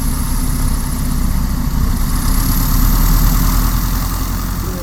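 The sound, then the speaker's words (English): A Piper Super Cub light aircraft engine idles at the Brooklands airstrip after landing. It has a steady, loud, low throbbing rumble and a faint high whine above it, holding an even level throughout with no voices. “Okay, we're on the Brooklands airstrip again with another of the pilots who's just brought his plane in.”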